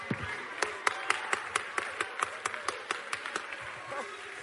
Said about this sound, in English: Praise God like some free people. Shout to Jesus like some free people. Clap to Jesus like some free people.